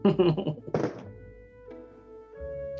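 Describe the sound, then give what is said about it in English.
Dice clatter in a quick series of knocks, then land with a firm thunk on a tabletop, rolled for a persuasion check. A faint, steady tonal hum lingers in the background afterward. “Use my my old man rolling dice.”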